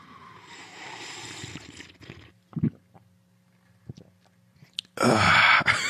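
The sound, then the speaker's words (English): Someone drinks water close to the microphone: a soft, wet slurping stretch, a distinct gulp, a few quiet mouth clicks, then a loud, breathy rush of sipping at the end. No one speaks. “This is me drinking some water.”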